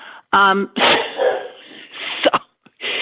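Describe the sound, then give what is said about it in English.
A dog barks loudly, a sharp bark followed by a longer run of rough barking and noisy bursts, with a few short pauses in between. “So many of you have told me, so now your dogs are barking?”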